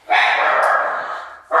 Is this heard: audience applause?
no